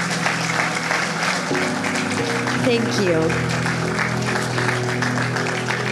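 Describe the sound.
A large audience claps steadily and loudly for the full stretch, a dense continuous wash of applause. A voice speaks briefly over it while sustained keyboard-like tones hum underneath.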